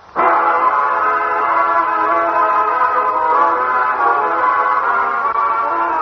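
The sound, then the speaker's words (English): A train whistle sounds abruptly and holds one loud, steady, multi-toned blast for about six seconds, unbroken, with no voices, as the show train sound effect on The Railroad Hour radio show. “The show train will pick you up at this NBC station.”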